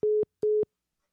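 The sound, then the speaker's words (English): Two short, steady electronic beeps in a quick, even pattern, the disconnect tone of a phone call as a caller's line drops, clear and fairly loud, followed by silence with no voices. “His phone might have died, or we just lost the connection.”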